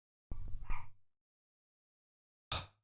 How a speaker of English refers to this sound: great, the fucking dogs are barking, awesome.